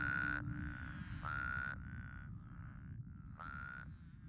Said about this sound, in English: Black Mesa is a high desert, arid, with few streams or rivers above ground. Water here tends to come from above or below, sometimes as a gentle rain, other times as a monsoon rushing over arroyos. When it rains, the toads croak.